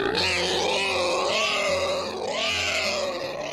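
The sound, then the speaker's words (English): A pig grunts loudly and continuously for a few seconds, a rough, throaty noise with rising and falling snorts over a low steady hum, with no one talking. “Whoa, did a pig just jump outside your window?”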